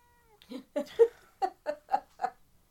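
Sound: cat meowing loudly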